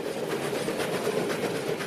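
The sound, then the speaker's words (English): A steam train of the Southern Downs Steam Railway rolls steadily along the rails at the old Warwick Rail Precinct in Queensland, its continuous rumble carrying a faint, regular clatter of wheels. Even in volume, with no voices. “devoted volunteers who operate the Southern Downs Steam Railway at the old Warwick Rail Precinct.”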